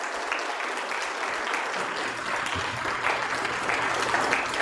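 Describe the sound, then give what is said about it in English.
A church audience on a Sunday morning claps steadily throughout to recognize members, a dense, sustained wash of many hands applauding at once from a large gathering, with no one speaking over it. “And I don't know how we do that on a Sunday morning, whether we clap our hands or...”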